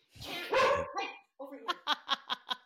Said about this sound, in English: And then all of a sudden the dogs went crazy.